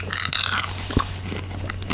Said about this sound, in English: No, I'm eating popcorn. Oh. It's nice, though. That's good. Sometimes it squeaks